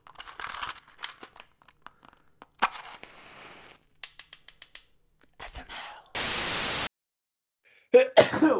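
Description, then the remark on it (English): A single sharp sneeze bursts out near the end, following a jumble of clicks, crinkles and a loud hiss of noise, with no talking. “Bless you.”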